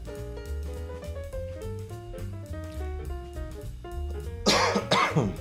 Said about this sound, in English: That's my first non-cough button cough on the show, by the way. Historic.